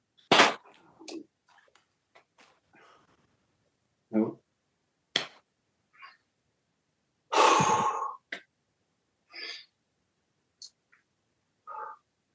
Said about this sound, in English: A moment later, he starts breathing really heavy, too.